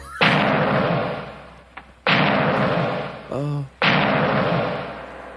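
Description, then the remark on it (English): Three heavy, booming knocks as Igor knocks on the door of Frankenstein Castle with its giant wrought iron door knockers. The knocks are spaced about two seconds apart, each ringing out in a long echoing decay, with a brief voice sounding just before the last knock. “And Igor is knocking on the door with the giant wrought iron knockers on that door.”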